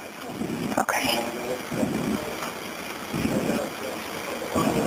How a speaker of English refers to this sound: Hearing cars driving crazy outside. Yeah, there's lots of deputies coming your way, so I'm hoping it's one of them.